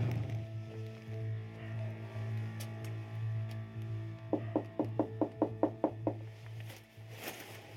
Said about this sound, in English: We're gonna go to his front door, give it a knock, and see if he'll answer a couple of questions.